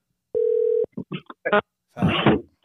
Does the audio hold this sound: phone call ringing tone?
yes